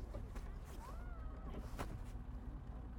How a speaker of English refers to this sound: Oh, there's a boat there!